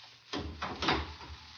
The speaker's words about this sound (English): Sir Lionel, would you close, please, the great door when you leave us?